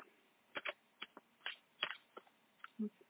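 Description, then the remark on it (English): Cards being shuffled by hand, heard as a quick series of crisp, papery riffling bursts and soft slaps at an irregular rhythm, fairly quiet, with no talking. “All right, I did shuffle. Let me do another quick shuffle.”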